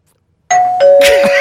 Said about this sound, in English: Oh, it rings a doorbell that goes after that.